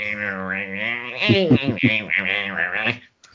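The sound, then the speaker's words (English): A man in an ultraviolet suit in the middle of a street imitates with his voice the screeching, warbling handshake of a 90s dial-up modem, with wavering tones that sweep up and down for about three seconds before cutting off abruptly. “You mean he was cosplaying as a 90s modem?”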